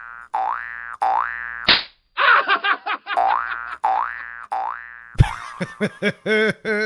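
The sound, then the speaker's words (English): A loud run of cartoon sound effects: springy, wobbling boings repeat in a steady rhythm, broken by sharp slap-like smacks, with a rapid warbling burst near the end and no talking. “Spring Hill Jack Slap.”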